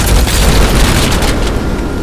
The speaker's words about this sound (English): Before there's a huge explosion.